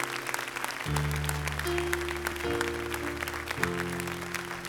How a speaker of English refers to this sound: Now give God one big hand clap. One big, come on, shout amen. Come on, praise God.